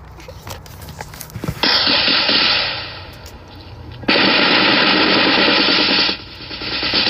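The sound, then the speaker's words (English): Gunfire in a jungle firefight in the Vietnam War, 1970, as a platoon comes under fire, filmed by a news camera: scattered sharp shots give way to loud, sustained rattling bursts of rapid fire, easing briefly before erupting again, with no voices. “Vietnam War, 1970, CBS camera rolls as platoon comes under fire.”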